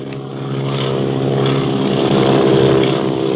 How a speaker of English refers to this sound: Where did that other plane come from? Look, it's following Clint and Barney.